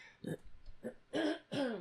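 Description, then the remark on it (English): A person with a frog in their throat clears it several times: two quick, rough bursts followed by two longer, louder voiced rasps, with brief pauses between them and no talking. “If this gets on your nerves, me clearing my throat, just tell me, and I don't know what I'll do about it, but I'll apologize.”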